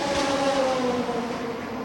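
A race car engine drones loudly and steadily on the circuit as the car goes back out after repairs to a short circuit in its main loom, its high buzzing pitch sagging slightly as it runs, with no voices over it.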